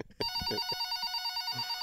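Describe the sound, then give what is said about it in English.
A telephone rings with a steady, warbling electronic tone that starts abruptly and fills the rest of the moment, clear, with faint low murmurs underneath, as another person is patched into a phone call. “Isn't there someone else on the phone call? Well, yeah, I think he's got to call that person. Let me patch him in.”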